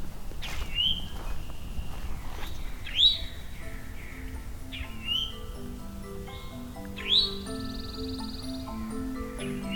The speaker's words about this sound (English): Pine warbler in the background.